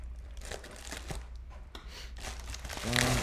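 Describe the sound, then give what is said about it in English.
Crinkling and rustling as a package is torn open by hand along a perforated line, a steady papery-plastic scrunching that grows louder toward the end, with a brief vocal sound near the finish. “Any scissors? This is tough enough.”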